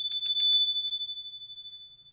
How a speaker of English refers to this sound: And one of George Bailey's kids tells him that they learned that every time a bell rings, an angel gets his wings. And George Bailey realises that Clarence has finally got his wings up in heaven.